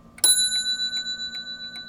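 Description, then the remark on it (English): A grandfather clock with brass works chimes once as a woman wearing gloves winds it, its bright tone lingering and slowly fading, while the steady tick of the clock repeats softly underneath at an even pace. “puts on gloves to wind her grandfather clock”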